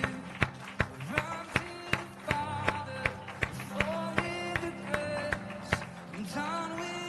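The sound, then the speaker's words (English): Sharp, steady claps in unison, clapping in praise to the Lord, beat out a regular rhythm, roughly twice a second, over sustained musical tones and faint voices underneath. “Let's clap one to the Lord.”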